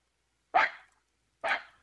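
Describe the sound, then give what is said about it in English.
A man's voice imitates a small dog with two short, sharp yaps about a second apart, fairly loud, with silence around them. “Yeah, sound like a perfect little dog there.”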